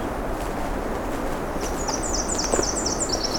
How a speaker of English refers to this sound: Got a distant winter wren on the left.